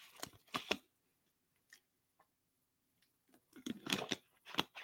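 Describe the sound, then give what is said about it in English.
Someone takes a drink of water: a few short, wet, crackly sips and swallows, then a quiet pause before another cluster of gulping sounds. No one speaks. “I'm going to have a little water here.”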